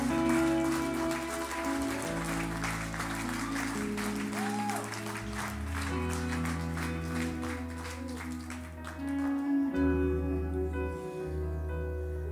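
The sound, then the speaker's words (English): An audience stands and claps for God in a dense, steady wash of hand claps, loud and continuous, over sustained organ-like chords and a low bass line. “My God, stand to your feet and give my God a hand clap.”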